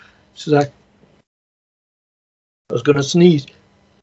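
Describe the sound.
A single short, delicate sneeze, a quick burst with a breathy edge, followed by a couple of seconds of silence and then a person talking briefly.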